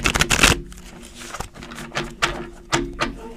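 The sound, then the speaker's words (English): A deck of cards being shuffled, starting with a quick riffling burst followed by a series of softer taps and snaps as the cards are squared and cut. “Let's shuffle it up and see.”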